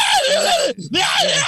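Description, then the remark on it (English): A woman screams loudly and shrilly in the horror film Texas Chainsaw Part 2, as the character Stretch, two strained, sustained shrieks separated by a brief gasp for breath. “Probably one of the greatest screaming females in any horror film.”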